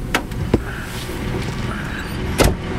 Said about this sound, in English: About 20 feet from the edge of the world, I ease the rig to a stop. Grabbing my pack of cigarettes and my lighter, I open the door and step down under the cab.